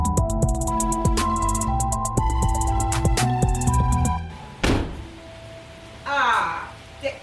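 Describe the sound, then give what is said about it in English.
A car door slams shut with a single heavy, dull thud as a musical passage ends, followed by a brief squeaky rising sound and one more short knock, as people are locked out of the car. “I just locked us out of the fucking car.”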